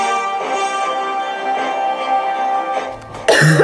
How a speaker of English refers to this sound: That was terrible! So when I point you, that means talk. I know, and then I coughed!